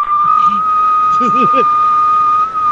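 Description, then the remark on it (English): A steady, piercing whistled tone held at one pitch for the full length, loud, with a few brief murmured voices underneath partway through. “Yeah, he heard like the payphones and it turns them off and then the whistling.”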